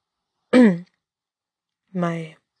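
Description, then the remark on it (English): A person clears their throat twice, two short, moderately loud voiced rasps separated by about a second of silence, with no other talking. “Leo just glared at Huta, and Tae-in adjusted his glasses before clearing his throat.”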